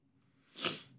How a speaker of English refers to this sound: Excuse the sniffle.